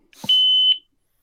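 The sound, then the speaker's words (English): A shot timer, its speaker covered with patches to make it quieter, gives a single steady, high-pitched electronic beep lasting about half a second, preceded by a short low click, then silence. “You definitely can adjust the beep on these special time ones.”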